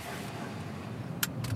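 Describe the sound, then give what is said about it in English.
A car's low, steady engine rumble runs throughout, with two short sharp clacks near the end like a door or latch, with no voices, as a man gets in his car and drives to Media, Pennsylvania. “Bill got in his car and drove to Media.”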